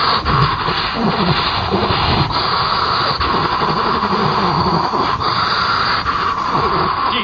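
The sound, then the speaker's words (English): Loud rasping breaths from a voice imitating the alien Queen's heavy breathing from the film in which Ripley and Newt meet her, wheezing and snorting continuously for several seconds with no words spoken. “And again, you got to question why she's breathing, because we've not seen the aliens really breathing before this.”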